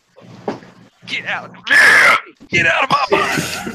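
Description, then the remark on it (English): A man on the toilet yells and strains in several loud, ragged bursts, groaning and grunting with brief pauses between the efforts, forcing out a bowel movement. “I yelled that motherfucker out.”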